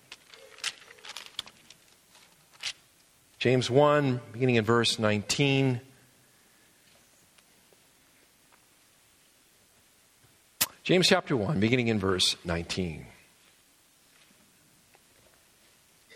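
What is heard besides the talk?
bible pages turning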